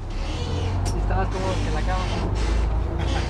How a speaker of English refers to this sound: A few minutes later, another bus arrives.